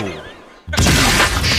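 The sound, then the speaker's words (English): A quieter, tonal stretch gives way to a sudden, loud 'Bunker Buster' explosion sound effect, triggered by a button on a 105.7 The Point radio show, a dense roaring blast that stays loud and crackling for about a second without fading. “And then let's go ahead and do the Bunker Buster.”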